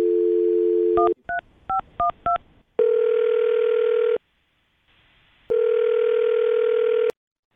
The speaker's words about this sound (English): Well, I'm going to dial her phone number right now, see if we can get her on the phone and find out what happened, okay?